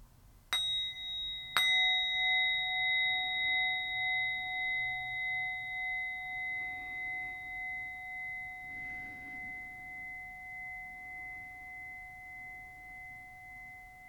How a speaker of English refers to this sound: And finally, we're going to end this practice today by inviting the bell. And so as I invite the bell, I invite you to take 3 deep, full breaths.